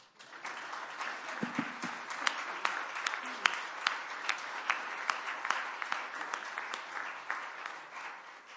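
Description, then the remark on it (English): A crowd applauds its pastor's family steadily for several seconds, dense overlapping claps forming a continuous wash with sharper individual claps popping out, sustained at an even level throughout. “And now you can applause.”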